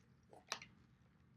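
Quiet wet mouth clicks and a soft smack from a dry mouth in the morning, two sharp ticks about a second apart with a faint lip sound just before the first, no talking.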